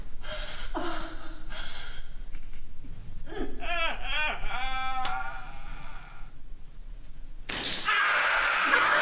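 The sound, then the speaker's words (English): A person lets out a strained, wavering cry of pain lasting a few seconds, rising and falling in pitch, as a spiky ball is shot into them from across the room, surrounded by noisy rustling and a brief burst of clatter at the end. “All right, listen to this scream.”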